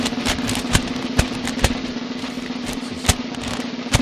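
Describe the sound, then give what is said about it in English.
Printed newspaper headline pages rustle and crinkle in a steady wash of noise, broken by several sharp, scattered crackles, with a constant low hum underneath and no voices. “Paper sound. In case people don't know what paper sounds like, they probably forgot because they got a computer.”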